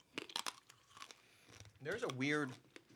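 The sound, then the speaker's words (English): Crisp crunching of a Necco wafer, a hard candy wafer made in the United States, being bitten and chewed: a quick cluster of sharp, dry crunches, then a voice murmurs briefly after the chewing. “Here, let me get some crunch for you here.”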